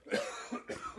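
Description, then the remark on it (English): A short fit of coughing after choking on saliva, two or three rough, raspy bursts in quick succession with no talking around them. “I'm going to cough, excuse me.”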